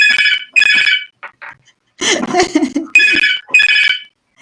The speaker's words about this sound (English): We never get away without a phone call or something going off.